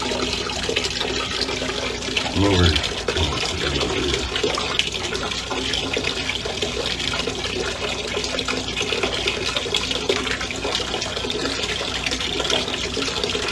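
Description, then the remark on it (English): Hot water gushes steadily into a bathtub, a continuous rushing hiss that holds for the whole stretch, with a brief low knock early on and a single muttered word. “I'm not peeing. That's the best I'm doing off the hot water stuff.”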